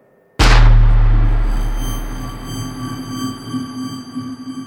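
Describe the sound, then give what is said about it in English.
A single loud gunshot, fired at night during a traffic stop as an officer reached his truck door, breaks the silence with an abrupt crack, then a long, slowly fading boom and a high, steady ringing tone that lingers afterward. No one speaks. “But just as I got to my truck door and just as I was about to get in, that's when the first shot rang out.”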